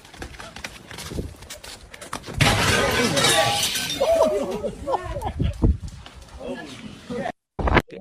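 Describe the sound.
A sudden loud crash as a scared bear slams into a glass window bursts out partway through, with a brief rattling clatter afterward as voices talk excitedly around it.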